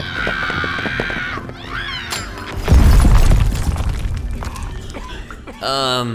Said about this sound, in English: Hey, Space Pirates, catch this! We'll cause a mini energy explosion. Everyone take cover!